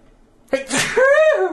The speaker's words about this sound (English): Oh, I gotta sneeze again.